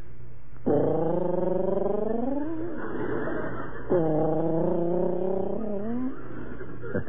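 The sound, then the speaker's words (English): A voice imitates a lovebird with a low, cooing whistle, two drawn-out phrases that each slowly rise in pitch before trailing off, steady and fairly loud with no talking. “Sort of a low, cooing whistle. Like this.”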